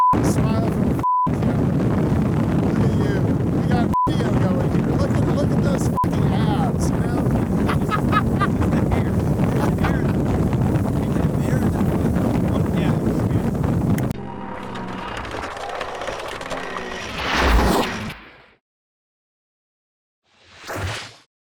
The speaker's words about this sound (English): well, they're letting me drive a boat. It's probably not safe. But since it's Australia, no one cares.